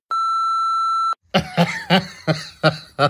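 A single steady, high-pitched answering machine beep holds for about a second, then cuts off and gives way to a string of rhythmic, breathy laughing bursts.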